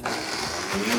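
A high-power Vitamix blender runs steadily, a loud, dense whirring roar with a low motor hum underneath and slight shifts in pitch as it spins, with no talking.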